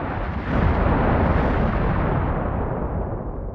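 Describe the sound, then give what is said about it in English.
A loud explosion shockwave blasts in and rolls into a heavy, sustained roar of rumbling noise that gradually thins out over a few seconds, with no voices. “Shockwave.”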